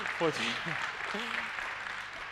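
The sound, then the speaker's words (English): A crowd claps steadily for the speaker's wife in a dense, continuous wash of applause, with a few brief raised voices or whoops rising over it near the start. “Someone needs to applaud that lady.”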